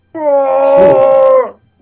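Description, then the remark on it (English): Chewbacca the Wookiee roars: one loud, sustained, wailing bellow lasting over a second, steady in pitch with a rough, growly burst in the middle before it cuts off. “Chewbacca roars.”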